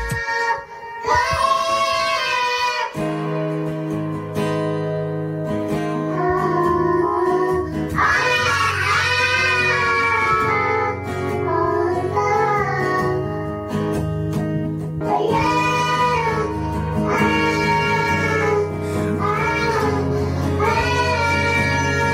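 A dad plays guitar under loud, wailing vocals from a little boy singing into a microphone hooked up to a harmonizer. The stacked voices swoop up and down in parallel pitches, continuous for about twenty seconds after a brief opening burst.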